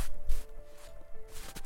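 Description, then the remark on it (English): A few crunching footsteps on frozen grass and fresh snow in a yard, in sunlight after overnight snowfall, walking up to a house's front door, spaced unevenly, each a short gritty burst over a faint steady hum. “Our footsteps crunched the frozen grass and fresh snow on Heather's yard as we made our way up to the front door.”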